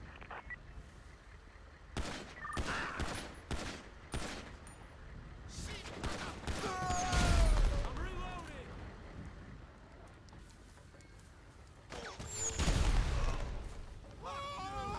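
Rapid bursts of video game gunfire from individuals armed with guns crackle in quick succession, with sharp repeated shots clustering in volleys and a couple of heavier booms, fairly loud against a busy background.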